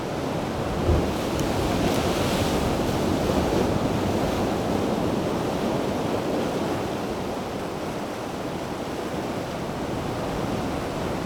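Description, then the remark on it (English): A little ocean swell surging into a rock cauldron, a loud, continuous roar of churning water with wind rumbling across the microphone; the wash holds steady throughout and no one speaks. “Here we go, here's a little swell coming through.”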